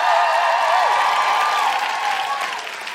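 A crowd at Vicar Street in Dublin applauds the musical guest loudly and steadily, a dense wash of clapping with cheers and whistles rising over it, fading slightly toward the end.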